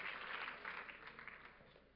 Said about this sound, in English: Will you clap your hands to the Lord as you are seated?